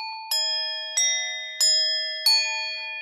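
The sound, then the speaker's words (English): Four bright metallic temple bell strikes at a steady, unhurried pace, each ringing with sustained shimmering overtones that overlap and decay slowly into the next. No voices are heard. “Temple bells.”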